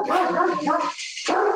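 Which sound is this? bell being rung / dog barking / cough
dog barking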